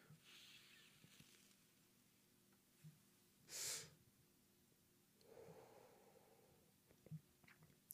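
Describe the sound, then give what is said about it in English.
A sharp hissing draw of breath as a hit is pulled from a smoke, followed by a longer, softer airy inhale or exhale amid quiet room noise with a few small clicks. “I'm going to take another hit of this Leroy Dinkins and hopefully not fucking cough my shit off here”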